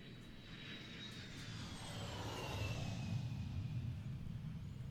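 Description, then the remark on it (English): An airplane passes overhead with a steady low engine rumble and a high whine that slowly drops in pitch, swelling louder midway before easing off slightly. “Oh, look, a plane.”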